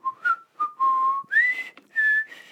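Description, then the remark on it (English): A man whistles a simple, slow melody, the clear tones sliding between sustained notes in a few short phrases with brief pauses, no talking. “So he's just randomly whistling.”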